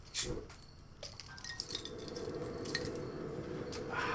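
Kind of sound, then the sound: nature, crackling fire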